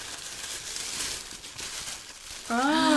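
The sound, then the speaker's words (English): Continuous rustling and crinkling of tissue paper being pulled open as a Christmas present is unwrapped, fairly soft and steady, until a voice cuts in near the end. “Tissue paper.”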